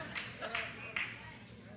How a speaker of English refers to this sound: Maybe you didn't hear me because you just clapped like you were at Wimbledon at a freaking tennis match.